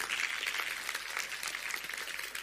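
A church audience at a morning service applauds a member who gave the communion talk: steady clapping, a dense, continuous patter of many hands at moderate volume with no voices over it.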